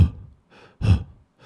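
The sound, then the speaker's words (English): A voice imitates the heavy, labored breathing of a wounded bull: a few rough, rasping breaths with huffing exhales at an uneven pace, fairly loud, with short pauses between them. “And we go down there and we hear his bellows, right? Oh. And it's like, oh man, he's still breathing. He's just he's about. Hurting. Yeah, he's like that.”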